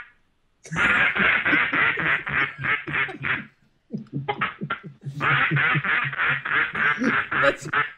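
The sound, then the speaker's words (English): A voice imitates a duck, loud, with rapid runs of quacks in two long bursts separated by a brief pause, sounding thin and band-limited like a phone line. “When that first quack came over, I thought, what in the world is it?”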